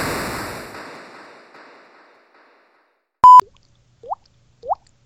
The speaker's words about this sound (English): Sorry, I heard a little water dripping sound. I thought... okay.